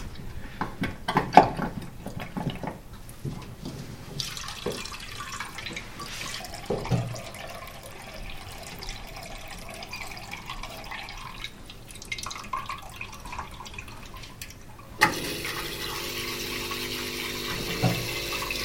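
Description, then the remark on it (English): Grey, black, mucky water drains from a washing machine, tilted back with a towel underneath, in a steady trickling stream into a bowl underneath, with scattered drips and splashes; near the end the flow turns into a louder, fuller gush with a faint mechanical hum. “And he's draining out some water into the bowl underneath.”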